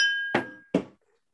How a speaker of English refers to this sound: gotta pour it a little bit to get a gulp here, man. I ain't drinking no beer, so my gulps. I just you get a little more bang for your buck from your boy in the Rocky Mountains as opposed to the panhandle of Florida tonight, y'all. Cheers. Gulp, baby.